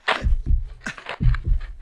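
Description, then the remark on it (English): A beating heart sound effect: deep, booming thumps in a steady lub-dub rhythm, about four or five heavy beats, with a breathy hiss layered over the top and no voices. “I tell you, it's his heart.”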